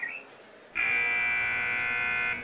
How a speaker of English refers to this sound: The 9:15 buzzer echoed through the complex.